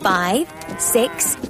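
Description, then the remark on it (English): Cows moo in quick succession as they are unloaded at Farmer McColl's farm: a long, loud, wavering low call followed by a couple of shorter moos, with no talking. “They unloaded the cows and began to count them.”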